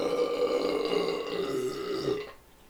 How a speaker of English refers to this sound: That was pretty fucking good. You like that? Yeah. I've been practicing. That was like a 7. It's the only way I can go to sleep now is if I practice my burps for 45 minutes.